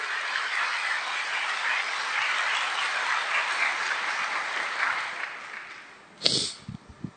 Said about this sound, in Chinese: 我们把最大掌声归给我们的上帝。